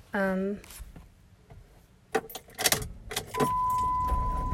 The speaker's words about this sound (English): Sorry, I have to turn on the fan in here because I'm like about to burn up in the car.